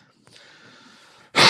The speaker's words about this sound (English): I do apologize if I cough. I've been having some trouble with allergies this week, and you just overlook that.